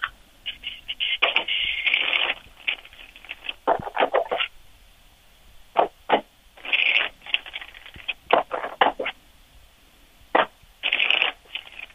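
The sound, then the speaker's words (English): Playing cards being shuffled in a home studio, a series of quick riffling bursts and flutters with short pauses between them, no voices. “I'm going to get three more shuffles, and I'm going to throw you out 9 cards.”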